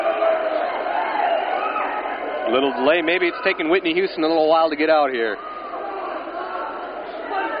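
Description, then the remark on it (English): A large stadium crowd waiting for the national anthem fills the space with a steady, restless roar and murmur, while a man talks briefly over the noise near the middle. “Crowd's getting a little impatient waiting for that national anthem.”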